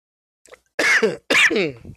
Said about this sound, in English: Ooh, gotta clear my throat.